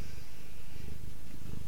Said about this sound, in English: I don't know if you guys can hear this, but my cat is in here with me, and he has not stopped purring the entire time.